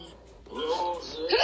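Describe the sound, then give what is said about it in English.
A person lets out a short, voiced hiccup with a brief squeaky, rising tone, followed by a second quick vocal catch toward the end, both fairly loud. “What kind of burp was that? A hiccup.”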